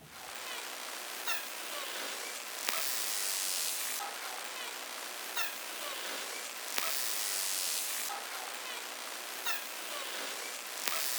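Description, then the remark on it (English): Dolphin buzzes: rapid, dense click trains that swell into bright, hissing bursts, with scattered sharp clicks and faint high chirps over a steady wash of underwater noise. “You've just heard dolphin buzzes, another way that this species uses vocals to communicate.”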